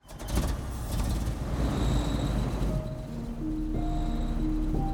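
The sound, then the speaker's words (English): A truck engine rumbles steadily as the truck drives, a low continuous drone with road noise and no talking. Faint higher tones drift in partway through. “The group set off in their truck.”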